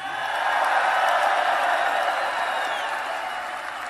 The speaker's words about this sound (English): So let's take a little applause, right? We'll go Make America Great Again. You clap if you want that. There we go. Keep America great. You clap if you like that.